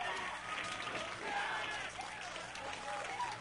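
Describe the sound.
A crowd cheers and applauds as the first thumbnail images from a lander arrive, dense clapping holding at a steady loudness for several seconds with whoops and voices mixed into the noisy wash.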